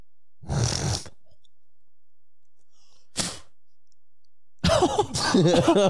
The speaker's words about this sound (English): I cough up some phlegm still. That's just from smoking years.